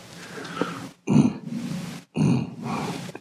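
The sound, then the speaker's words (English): A man's voice imitates the growl of a lion eating its prey: low, guttural grunting rumbles in about three bursts, fairly loud, with brief pauses between them. “It's actually the way the ancients describe the use of the word is how a lion, the sound a lion makes when it's eating its prey.”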